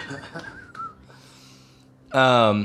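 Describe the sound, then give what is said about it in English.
A short whistled melody wavers up and down over a few quick clap-like taps, whistled and clapped in character during a role-playing game, then settles into a low hum before a loud, bright buzzing tone bursts in at the end. “So you say sing, he's just like a little bit shaken up, so he'll just start whistling and clapping along a little tune for you.”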